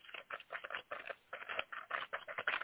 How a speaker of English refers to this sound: It's your paper entries that are going in the jar. Here's the jar. Now you are in the jar for the drawing.